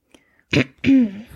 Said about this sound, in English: You clear your throat to be all official.